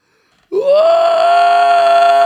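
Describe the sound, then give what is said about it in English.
After a brief silence, a man lets out one loud, sustained scream that swoops up in pitch and holds a steady, strained high tone for nearly two seconds, imitating a cry from the gut. “I scream. Wow. I mean, a gut from the bottom of my gut.”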